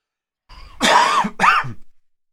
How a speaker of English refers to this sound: He had to cough.